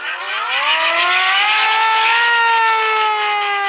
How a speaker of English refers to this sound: Let's just jump to the siren.